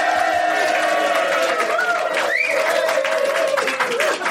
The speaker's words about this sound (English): And so the reason is, this Word podcast is number 200, and it's taking place at in the King and Queen in Foley Street in London's swinging West End in front of the London Massive. Please applaud yourself.